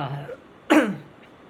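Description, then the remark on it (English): A single sharp, raspy cough from a person with a sore, scratchy throat bursts out right after a brief bit of speech fades, then quiet follows. “oh, sorry for the cough, by the way.”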